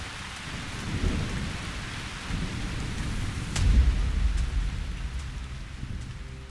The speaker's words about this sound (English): For the longest moment, I looked up and down the platform as the rain continued to fall, then took a deep breath and stepped inside.